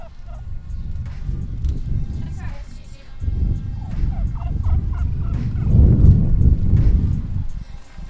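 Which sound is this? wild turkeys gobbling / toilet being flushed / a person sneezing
wild turkeys gobbling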